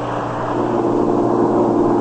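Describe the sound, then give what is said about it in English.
A car engine runs steadily at idle after the tank is filled up with Atlantic Imperial gasoline, a continuous droning hum with a low, even throb and no change in pitch, alone with no voices. “Ach, der Engine sounds good.”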